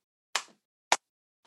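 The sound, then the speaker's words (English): Light, quiet golf clapping: two soft, sharp claps about half a second apart, then a fainter third, slow and sparse with silence between and no talking. “Golf clap there.”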